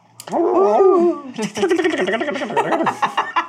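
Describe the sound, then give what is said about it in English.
A person imitates wolf vocalizations, starting with a drawn-out, wavering howl-like growl and then breaking into a quick run of choppy yips and grumbling barks. “I say in wolf.”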